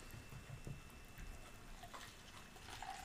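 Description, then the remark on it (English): A quiet, steady trickle and fizz of a drink being poured into a glass, continuous for a few seconds, with no voices. “Oh yeah, that was a good pour.”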